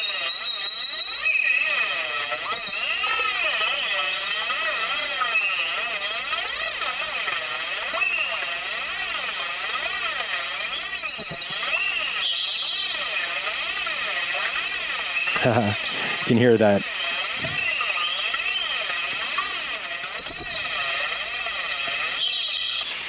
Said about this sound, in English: Oh, here we go. Here's the flanger. That sounds really cool.